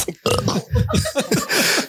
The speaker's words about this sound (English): I have a hard time like, excuse me, burping.